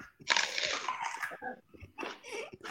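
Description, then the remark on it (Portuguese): Loud crunching as someone bites into a raw onion, a few wet, crisp chomps in quick succession with faint breathing and murmurs around them. “Sempre que o Everton fizer dois golinhos, quem estiver aqui come uma cebola”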